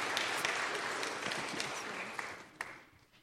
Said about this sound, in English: Let's give our three characters a round of applause for being with us today.